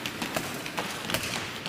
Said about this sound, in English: Where you're sitting, can you stomp your feet? Can you do that? Very good. Now, can we do it in time? Ready?